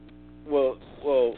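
A steady, low electrical hum on a caller's phone line drones through the whole line, with two short bursts of voice-like sound rising over it midway and near the end.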